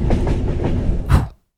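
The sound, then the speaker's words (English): A train approaching a lake rumbles and clatters loudly, then gives a final harsh burst as it grinds to an abrupt stop, leaving silence. “Let's bring this train to a screeching halt, shall we?”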